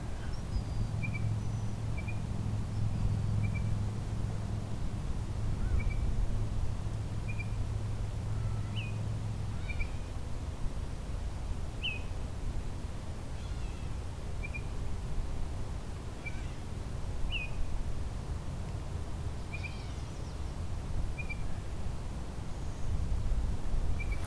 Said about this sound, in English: behind me, this oriole is still sort of singing.